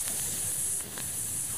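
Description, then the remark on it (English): A voice makes a sustained, sharp hissing 'sss' sound, like a snake, bright and airy, holding steady with a short dip partway through. “Oh, the whistling S's. Snakes.”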